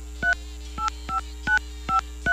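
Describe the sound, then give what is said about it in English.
Six quick telephone keypad tones beep in a steady rhythm as someone dials to call a contest winner, each a short two-pitch dialing blip, clear over a faint steady hum, with no one talking. “Now, we announced the winner earlier, but we're going to call him now.”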